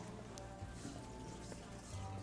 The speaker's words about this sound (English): Yeah, there's another water wall. Ooh, water wall.